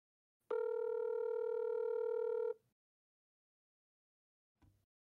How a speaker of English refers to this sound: So I'm going to go ahead and ring his phone. Whether or not he answers, we'll see. But just so we can say that we did, I'm going to ring him.